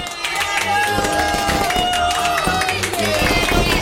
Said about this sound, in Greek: Ένα χειροκρότημα για τον Πικέ.